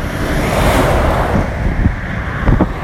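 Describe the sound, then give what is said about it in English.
A steady, loud roar of many heavy trucks driving past on a road, with wind-like rushing noise and a few deeper rumbling surges toward the end. “Oh man, there's so many trucks.”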